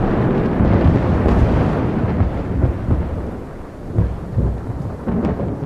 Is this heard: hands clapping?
no